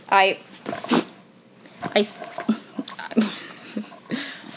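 A dog squirms and shifts around all over a person, making scattered rustling, scuffing and soft bumping sounds, with a brief high whine at the start.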